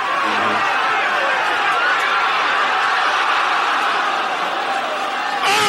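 A large golf crowd on a golf course roars and cheers as a shot goes in, in a dense, steady wash of voices that holds at full strength for several seconds, with scattered whoops and laughter mixed in.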